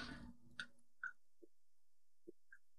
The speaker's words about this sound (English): Sipping on water today. No caffeinated beverage.